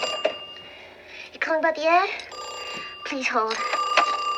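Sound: telephone bell ringing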